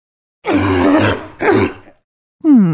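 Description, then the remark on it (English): A sea lion barks loudly: two harsh, raspy, guttural calls in quick succession, the first longer, followed by a brief pause and the start of another throaty call. “So, what's that sound? A sea lion!”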